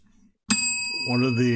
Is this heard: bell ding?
yes